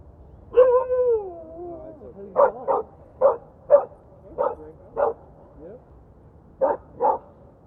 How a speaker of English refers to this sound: Yes, we know. Huskies are always talkers.